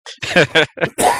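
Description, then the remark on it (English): Short run of strained, choking vocal bursts, several voiced grunts in quick succession ending in a harsher, breathy cough, all fairly loud and over in about a second. “I'm just choking and coughing.”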